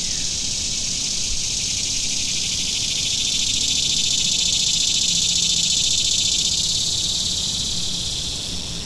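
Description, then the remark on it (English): A dense, shrill chorus of katydids buzzes without pause in the woods at nightfall, its high hiss faintly pulsing and holding a steady loudness throughout, with no voices. “A thrush cleared his throat in a thicket, and on all sides rose the pulsing croon of katydids.”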